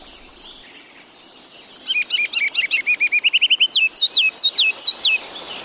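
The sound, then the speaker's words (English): A Virginia rail calls alone from a marsh in spring, clear: a rapid run of sharp, high notes that speeds into a tight rhythmic series, then breaks into looser, slurred calls. “It's a Virginia rail, unseen but hardly unheard, ringing in the new season.”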